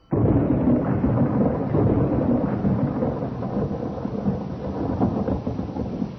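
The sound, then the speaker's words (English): A heavy storm roars steadily, dense rain hissing over a deep, continuous rumble of thunder, loud throughout with no voices. “Like vultures on a dying lamb, we came down in rain and darkness on a coffin in the lonely rustic graveyard of Glencourse.”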